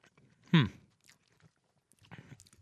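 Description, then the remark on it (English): Mouth sounds of someone biting into a big mouthful of food heavy on cheese and sour cream, with no crunch: a loud soft bite with a brief voiced murmur, then a pause before quieter, squishy chewing. “I want a big bite. Now, this won't have a crunch.”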